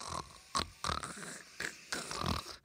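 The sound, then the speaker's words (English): A person imitates the happy snort of Pippa, a pet: about five short, rough, nasal snorts and grunts in an uneven rhythm, loud, with no talking. “Actually, so instead of just replaying, can you just give me a good snort from Pippa?”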